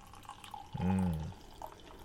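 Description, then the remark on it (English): A short gurgling pour as aged, still-carbonated beer flows from a bottle opened over a garbage can, one hollow glugging burst lasting about half a second against quiet room tone, with no talking. “And the pour.”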